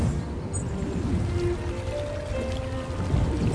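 waterfall flowing water

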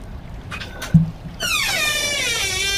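creaking door

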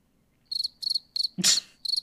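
crickets chirping

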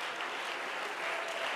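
audience clapping hands

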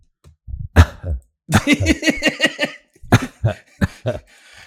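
cough

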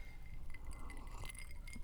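glasses clinking

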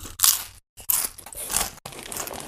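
crunching potato chips

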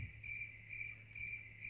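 crickets chirping sound effect

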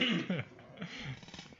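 deliberate cough

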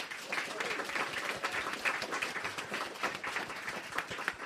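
studio audience applause

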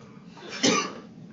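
cough away

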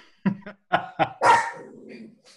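dog barking

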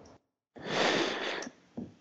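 panting

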